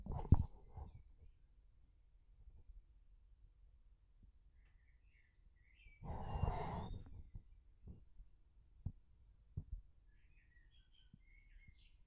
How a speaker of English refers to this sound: Can you guys hear that bird just tweaking outside my window? I got to keep the window open because, yeah, it's very hot.